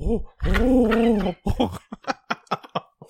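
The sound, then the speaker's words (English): A person imitates a pigeon's coo with a drawn-out, wavering throaty tone, followed by a quick series of short, choppy vocal bursts. It is fairly loud. “That's the fucking best pigeon impression ever.”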